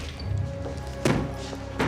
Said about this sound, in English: He kicks a door open.